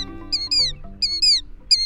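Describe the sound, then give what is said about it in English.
A killdeer cries in shrill, high-pitched, down-slurred calls, repeated in a steady rhythm of paired notes over a low, steady background hum. “The rhythmic cries of a killdeer are familiar across most of the country in spring and summer.”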